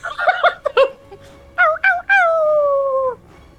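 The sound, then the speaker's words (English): A wolf's whimpering howl: a burst of short, quavering yelps and whines, then a few brief cries and one long, drawn-out mournful howl that slowly falls in pitch. Fairly loud, with no talking. “The wolf cries because he hasn't done anything in the combat.”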